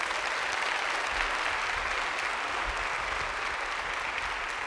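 An audience applauds steadily during a church sermon, giving God a round of applause, a dense wash of many hands clapping at once with no pauses, sustained at an even level for several seconds.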